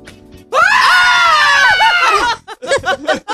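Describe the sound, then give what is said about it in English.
A loud, sustained scream rings out for nearly two seconds, sharp and piercing like a playful Halloween yell, then breaks into a few shorter vocal bursts. “That's a pretty good Halloween yell, isn't it?”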